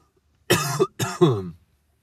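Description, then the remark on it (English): Two harsh, chesty coughs in quick succession, fairly loud, the second one dragging into a rougher, throaty tail, with silence around them. “Cough's killing me here.”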